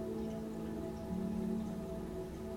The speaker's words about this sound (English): And you're suddenly taken aback by how the rain is quenching the thirst of the earth. The pitter patter of the rain, the simple water of nature's magic.